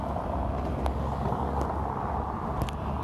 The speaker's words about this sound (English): But the cars actually have this infamous sound of going down these brick roads because Athens is comprised of many of those types of streets.